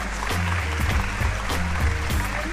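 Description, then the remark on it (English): Sustained audience applause, a dense steady patter of many hands clapping at an even loudness, with a low rhythmic thump running underneath throughout. “They just won't stop applauding.”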